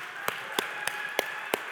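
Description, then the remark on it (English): Sparse, half-hearted clapping: five distinct sharp claps at a slow, fairly even pace over a steady background hiss, with no voices. “And second, guys, it's graduation weekend, and I think we need to redo the clapping here, because some of you were clapping like we were at a funeral.”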